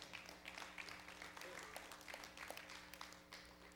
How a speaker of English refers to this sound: Clap your hands. That's a praise moment.